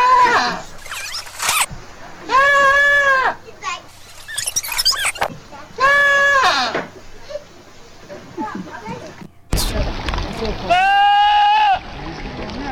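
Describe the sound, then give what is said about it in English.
Goats let out loud, wavering bleats that sound strikingly like people yelling, three long drawn-out cries separated by short stretches of rustling and scuffling noise. “Let's have a listen to some of the goats yelling like humans.”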